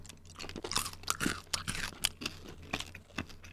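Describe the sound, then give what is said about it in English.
Crunchy chewing of packaged cookies with M&Ms inside, a string of sharp, crackly bites and grinding chews in an uneven rhythm, fairly quiet and without any talking. “Cookies and scream. Mm. Yeah, I'm okay with these.”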